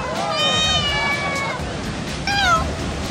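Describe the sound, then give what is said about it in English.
A cat meows twice, first a drawn-out wavering call and then a shorter one, fairly loud over a steady rushing background noise. The cat is Hokule'a, a cat in Hawaii that goes surfing with his owner. “A surfing cat? Actually, there is such a thing.”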